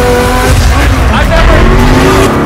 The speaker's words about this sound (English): The reason this car is one of the fastest on the planet is because of its twin turbocharged V8 engine, and the fact that its entire frame is made out of air core carbon fiber, making it weigh 500 pounds less than a Lamborghini.